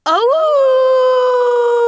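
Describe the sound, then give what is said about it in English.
A person loudly imitates a wolf's howl, one long sustained note that rises briefly at the start and then holds steady, alone with no talking. “He howled as loud as he could.”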